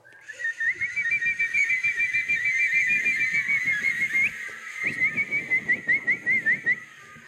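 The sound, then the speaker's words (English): Many overlapping whistles chirp and trill together, imitating a flock of birds, with a busy rustling crowd texture underneath; the chirps turn into quick separate tweets toward the end. “Or a flock of birds.”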